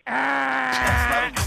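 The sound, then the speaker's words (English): A loud, drawn-out throat clearing: a steady, low, groan-like voiced tone lasting over a second, with raspy bursts toward the end and a short rough catch at the finish. “I guess you're not allowed to clear your throat on the show.”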